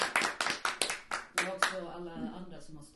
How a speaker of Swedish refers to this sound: En liten applåd. En liten applåd till dem.